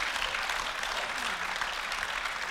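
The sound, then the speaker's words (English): A crowd breaks into steady applause, a dense wash of many hands clapping at once, loud and sustained throughout without any voices standing out. “I feel like that deserves a round of applause.”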